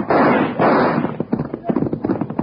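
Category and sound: sound effect, gunshot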